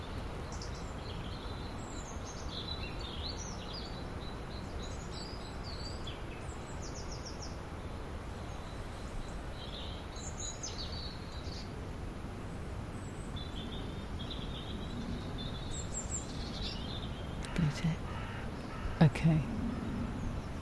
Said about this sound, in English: They are slightly different, but very similar. Maybe you can hear from the... One of them sounds like it comes from a slightly larger bird.